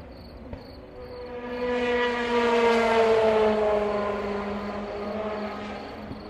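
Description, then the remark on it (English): A steady, high-pitched cricket trill, heard on the right stereo channel, runs faintly throughout, pulsing at first, while a louder droning engine of a passing aircraft swells and fades over it. No one speaks. “Crickets on the right hand mic, and the sound of the world's greatest motor race on the other side of the mic.”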